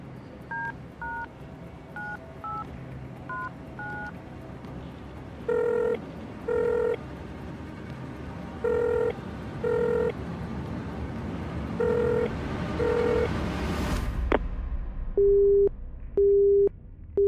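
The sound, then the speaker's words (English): A quick run of touch-tone keypad beeps as a phone call is dialed, then paired ringing pulses repeat a few times before a sharp click as the person called manually disconnects, and a steady, evenly spaced disconnect tone beeps. No talking. “Whoever that is has manually disconnected the call.”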